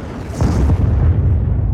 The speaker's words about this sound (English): Around him, gasps of astonishment are drowned out by the thunderous roar of an explosion that echoes off the mountains and shakes the ground under his feet.